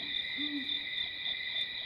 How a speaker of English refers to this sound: I don't know that the owl is necessary